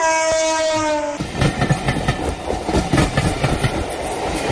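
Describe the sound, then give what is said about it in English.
A train sounds a sustained horn for about a second, then rumbles past with loud, rhythmic clattering of wheels over the rails, with no voices. “Because this is the age that's of better. A train.”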